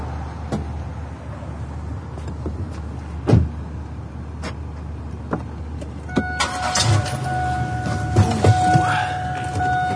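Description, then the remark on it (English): A car engine rumbles low and uneven, with scattered knocks and clicks, then a strained whine rises near the end as though the motor is struggling. No one speaks. “Some guys having car trouble over there.”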